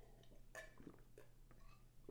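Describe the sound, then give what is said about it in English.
A few short, soft slurping and swallowing sounds at an irregular pace, someone taking a quick sip of water, over a low steady hum with no talking. “Get a quick sip of water here.”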